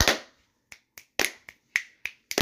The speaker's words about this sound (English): Can we all get a round of applause? Can we get a slow clap?